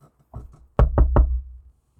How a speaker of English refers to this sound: You know, it's... I don't know, it's got a doorknob that's slightly brass or something. And Agent Locke knocks on the door.